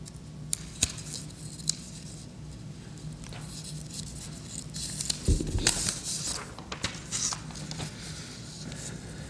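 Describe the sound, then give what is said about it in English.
Paper rustles and crinkles for several seconds as sheets are shuffled and flipped, with sharp little crackles scattered throughout and a busier burst of handling midway, over a low hum. “If I can find it with all this paper.”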